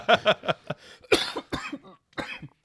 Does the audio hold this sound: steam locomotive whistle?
no